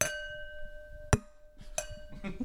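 glasses clinking

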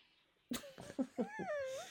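cat yowling

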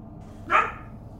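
dogs barking

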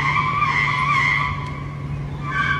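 car ramming another car

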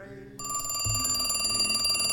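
telephone ringing

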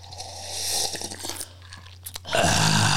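chewing ice cubes

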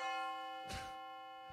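bell sound effect

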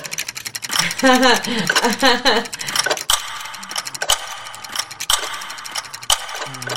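clocks ticking

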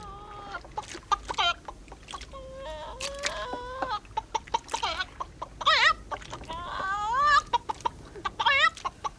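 chicken clucking

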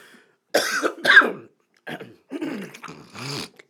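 coughing and throat clearing

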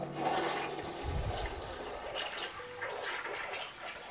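toilet being flushed

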